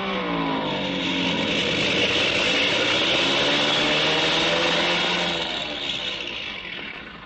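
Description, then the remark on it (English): An airplane coming in fast to land, its engine, which has been acting up, a loud, steady droning roar with slowly shifting pitch that fills the whole stretch before easing off slightly at the end. “Well, we'll know in a minute because he's coming in fast.”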